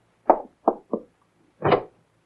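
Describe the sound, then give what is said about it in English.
A door is opened with a few hollow clunks: three quick knocks of the latch and handle, then a fuller thud as it swings. No voices are heard. “Open the door.”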